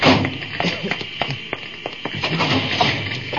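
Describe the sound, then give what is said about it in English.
Someone rummages through cabinets, with a quick, irregular series of thumps and clunks as doors and contents are knocked about over a steady background hiss. No one speaks. “I'll start looking through these cabinets.”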